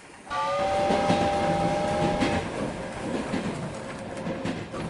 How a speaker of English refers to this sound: Is that our train? I think so. Hop on.